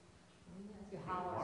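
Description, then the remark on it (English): A man's voice imitates a dog, starting low and then rising into a loud, strained, drawn-out yelp. “You howl. You bark like hell.”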